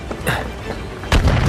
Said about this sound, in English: The building blows apart. Shocked onlookers watch from the city streets. An enormous shockwave rocks the entire city.